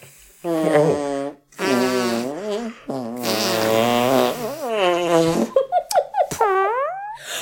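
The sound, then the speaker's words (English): A series of loud, buzzy mouth-blown fart noises made against an arm: several long, wobbling blasts followed by a few short sputtering pops and a rising squeak at the end. “I usually just blow onto a part of my arm. Like you can just blow on your forearm”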